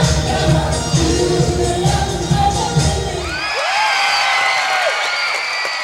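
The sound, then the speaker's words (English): A large crowd roars and cheers loudly, then shifts into high-pitched screaming and shrieking voices rising and falling over each other, sustained throughout with no clear speech. “Hear them scream.”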